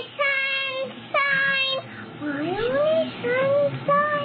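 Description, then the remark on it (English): A talking doll, to be sold by Jacksonville Promotions Company as a tribute to Kaylee Marie Anthony, plays a recorded song when its belly button is pressed: a high, tinny childlike voice singing a few sustained, wavering notes, fairly loud with nothing else around it. “When you press her belly button, you will hear this song.”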